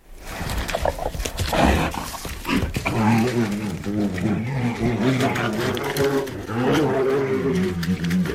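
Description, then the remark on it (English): A brown bear growls and groans in deep, rumbling bursts, loud, with a rough throaty texture that rises and falls continuously for several seconds. “It was a brown bear.”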